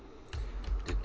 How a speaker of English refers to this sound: On his keyboard from the 1950s.